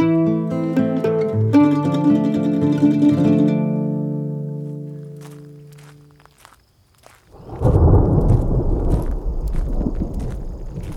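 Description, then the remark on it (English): Soft tonal music fades out, then a loud, deep rumble of thunder rolls in and keeps churning close by for several seconds, with no voices. “Thunder grows ever closer.”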